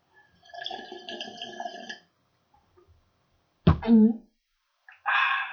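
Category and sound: household object, drinking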